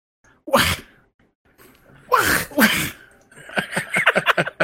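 A man makes sneeze-like noises: one short burst, then two louder sharp bursts close together, followed by a quick choppy run of breathy vocal bursts, fairly loud.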